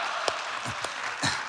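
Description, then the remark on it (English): A few sparse, scattered hand claps from an audience clapping for introduced residents, three or so separate claps spaced apart over a quiet background, rather thin and faint, with no one talking. “You can clap for them, I guess.”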